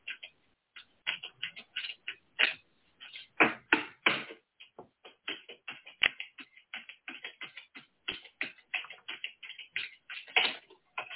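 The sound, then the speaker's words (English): Rapid, irregular papery flicks and taps as a deck of oracle cards is shuffled by hand, moderately loud, continuing steadily for several seconds with no voices. “So I can't shuffle the way that you shuffle.”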